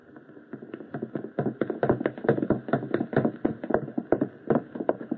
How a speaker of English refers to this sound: Listen, whoever it is just left. I can hear him going downstairs.